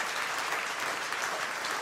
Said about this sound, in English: Go ahead and clap. I think that's awesome. We need to be clapping.